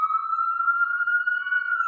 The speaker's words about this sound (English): is that New York sirens? Yeah, that's, I'm going to mute it. Go. No, that's New York background. That's nice.